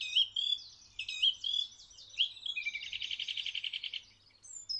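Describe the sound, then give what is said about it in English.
A song thrush in a bush sings a varied run of bright whistled phrases, repeating some two or three times before shifting into a rapid rattling trill, clear against a quiet background. “And it repeats each sound two or three times and then makes some completely new sounds.”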